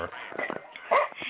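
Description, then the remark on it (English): A single short bark from a 16-year-old dog rings out near the end, loud, overlapping with a person speaking a brief phrase, at a quiet 2-acre property in Washington State. “So you can hear my 16-year-old dog barking.”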